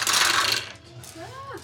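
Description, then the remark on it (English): A handful of dice clatter down through a dice tower into a dice tray in a dense, rattling burst lasting about half a second, followed by a brief voice afterward. “Out of the dice tower? It yep. landed in the dice tray.”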